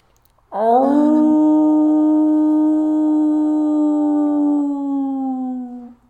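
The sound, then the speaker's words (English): A single long wolf howl rises sharply, then holds a steady, mournful tone for several seconds before tapering off at the end. It is loud, with no other sounds. “He gives out the cold howl, and the rest of the sept begin to approach.”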